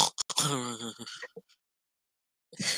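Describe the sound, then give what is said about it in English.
A person imitates snoring with a raspy, throaty vocal snort lasting about a second, followed by silence and then a short breathy burst of voice. “I'm not the only one who fell asleep, though, and I don't snore. Thank you very much. Yes, you did. You snored. You're like...”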